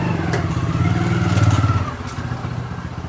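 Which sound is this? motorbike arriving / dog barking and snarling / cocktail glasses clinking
motorbike arriving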